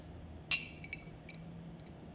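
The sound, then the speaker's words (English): Glasses of Four Roses Small Batch bourbon clink together in a toast: one bright, ringing clink, then a few softer glassy taps, all fairly quiet over a low steady background hum with no talking. “That's all right. Cheers. Cheers.”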